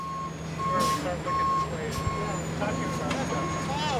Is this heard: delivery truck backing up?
yes